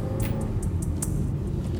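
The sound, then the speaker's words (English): A car's steady low engine rumble from inside the cabin, waiting for traffic before turning right onto Cumberland Parkway to make a U-turn, at 9:45 a.m., with faint sharp ticks scattered over the drone and no one speaking. “Then I have to make a U-turn. I gotta wait for some traffic before I turn right.”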